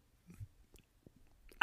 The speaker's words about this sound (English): I think it's a chip, to be honest with you. It is 100% the texture of the chip. It is a very loud and crunchy chip.